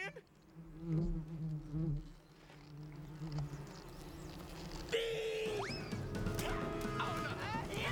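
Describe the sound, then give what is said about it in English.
A steady, droning buzz of animated bees runs through the whole stretch, fairly loud, with voices and a few sharp yips or whines breaking in over it partway through. “We're gonna have, yep, animated bees.”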